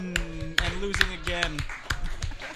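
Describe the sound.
Slow, steady claps ring out about twice a second, sharp and fairly close, while voices carry on underneath.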